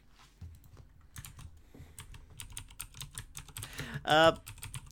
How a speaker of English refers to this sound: And now you're Googling it. With my keyboard, you can hear me Googling it.